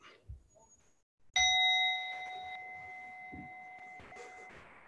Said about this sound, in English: I'll hit the bell. We'll start.